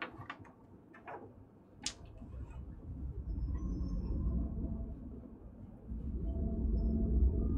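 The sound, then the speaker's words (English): Several sharp, echoing water drips ring out in the first couple of seconds, followed by a steady low rumble filling a large open underground cavern, with steady dripping of water and no voices present. “You can hear this kind of echo sound, like the echo of a large open cavern. You can hear the dripping, steady dripping of water.”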